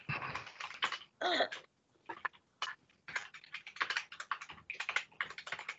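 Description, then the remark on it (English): Game controller buttons click and clack in quick, irregular flurries, broken by short pauses, as someone plays a video game. The tapping is fairly crisp, with no voices. “excuse me if you hear any buttons clicking and clacking in the back. I am playing that Zelda”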